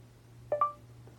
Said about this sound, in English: That is how you can use your voice to activate features. I listen after a beep.